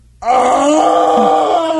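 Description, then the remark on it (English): A loud, guttural wailing moan from a human voice begins abruptly and holds for about a second and a half at a steady, slightly wavering pitch, rich and throaty, with no words. “Oh, the guttural whale come.”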